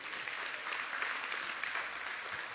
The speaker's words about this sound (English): And I want you to face the people. Y'all give Bruce a hand clap.